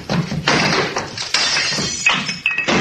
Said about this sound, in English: Sounds of a scuffle, glass breaking